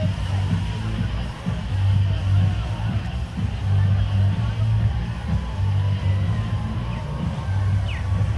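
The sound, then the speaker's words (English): A crosswalk signal repeats a low, steady tone in long pulses every couple of seconds, running through a constant hum of street traffic and crowd murmur with indistinct voices. “Oh, there's that crosswalk again. It's kind of got a beat.”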